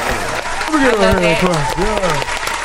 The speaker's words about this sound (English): Yeah, let me get a clap.